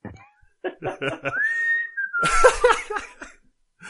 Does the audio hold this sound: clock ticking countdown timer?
no